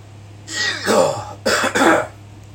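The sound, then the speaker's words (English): A person lets out a deep, rough cough in two heavy bursts after smoking hash cured for about four months, fairly loud, with a steady low hum in the background and no talking. “That was a deep cough.”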